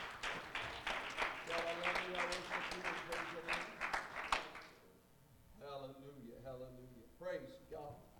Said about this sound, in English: As you're seated, give the Lord a hand clap of thanksgiving one more time.